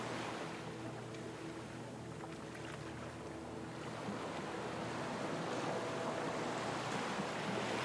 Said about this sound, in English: Crash of the waves at your side.